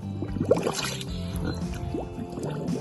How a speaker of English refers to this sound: My favorite recording is this one, of a pig blowing bubbles into a puddle of water.